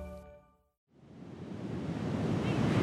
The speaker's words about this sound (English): Do you hear that roar? It is the Pacific Ocean. I'm at Ocean Beach in San Francisco, and I am surrounded by, well, a whole lot of sand.